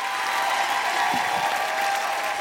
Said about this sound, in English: Can everybody just say a huge thank you, a big round of applause for the wonderful Tiff Stevenson?